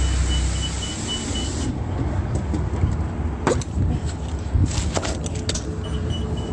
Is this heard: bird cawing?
no